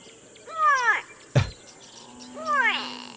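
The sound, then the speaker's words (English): A gray go-away bird gives two drawn-out, nasal, wailing calls that bend downward in pitch, almost like a complaining human voice, with a short dull thump between them. “This is the gray go-away bird.”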